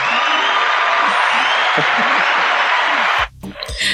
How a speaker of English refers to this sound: Hold on. I'm going to give you guys applause.